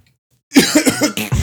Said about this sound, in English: We kind of exchange pleasantries, and then you fart, but you try to cough to cover it up. What does that sound like?